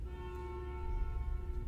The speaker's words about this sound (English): Do we have a bus that drives around our neighborhood and honks? Don't know what that is. I think it says church bus or something like that.